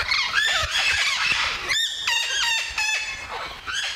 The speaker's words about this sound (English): Rio Abajo, wild parrots. That was her. Ka-ka-ka.